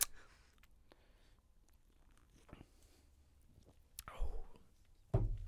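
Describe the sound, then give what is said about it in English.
A wet slurp as someone sips a Pabst Blue Ribbon beer, then a sharper burst of noise right after, set against a quiet, hushed background with faint mouth sounds. “Oh, I heard the slurp and the sniff.”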